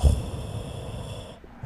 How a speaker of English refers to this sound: Oh, sorry. I fell asleep for a second. Oh. That was me snoring.